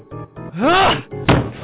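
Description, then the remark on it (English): A chair bashing against window glass without breaking it: several dull, heavy thunks, with a rising-then-falling tonal whoosh between them and a sharper knock near the end. “Maybe I can take this chair and bash it through the glass.”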